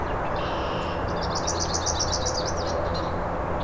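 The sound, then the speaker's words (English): A yellow warbler sings a quick series of bright, high, sweet notes lasting about two seconds, heard over a steady low rumble of background noise. No one speaks. “Oh, there was a yellow warbler.”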